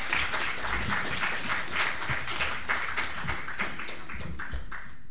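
An audience claps steadily for several seconds, a dense, even wash of many hands with no one speaking over it.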